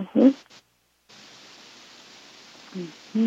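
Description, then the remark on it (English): A steady, even wash of distorted static hisses for about two seconds after a short silence, framed by brief murmured voice sounds at the start and near the end. “Distortion, right?”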